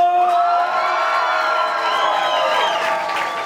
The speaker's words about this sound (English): Before we bring the Dougs out, we've got a very special guest. Ladies and gentlemen, welcome to the stage with a big round of applause.